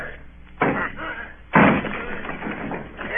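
A house door being forced and broken down: two heavy crashing blows about a second apart, the second bursting into a loud clattering, splintering rush that trails off.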